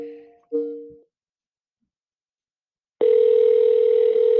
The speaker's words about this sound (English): Oh, it's ringing. It's actually ringing.